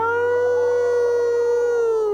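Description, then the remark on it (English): A single long howl of an old coyote, loud, holding a steady pitch for about two seconds before sagging slightly at the end, with no talking. “The old coyote howls.”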